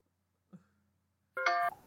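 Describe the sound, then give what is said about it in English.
A short, bright electronic ringtone chirps for a fraction of a second, rich in steady tones, after a soft thump in otherwise quiet surroundings. “Are you dissing out ringtones?”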